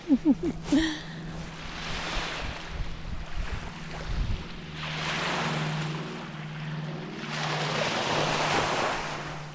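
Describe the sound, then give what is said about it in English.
Waves of Lake Huron break on a sandy bay beach in broad, hissing surges that swell and recede every few seconds, with a steady low rumble of wind underneath and a brief voice-like sound at the start. “I don't know if you can hear, probably can hear the waves.”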